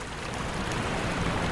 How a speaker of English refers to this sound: Why is that water getting louder? Waterfall.